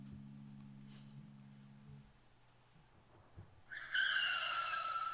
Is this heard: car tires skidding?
yes